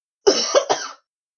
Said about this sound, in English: And that's a cough.